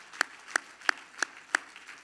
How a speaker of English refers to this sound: Everybody clap your hands to the Lord this morning.